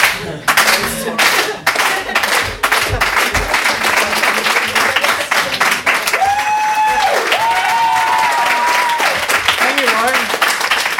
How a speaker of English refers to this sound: I'm afraid that I'm not funny, and my biggest dream in the whole world is to one day just spontaneously get a slow clap. Like, that's all I really want in my whole life.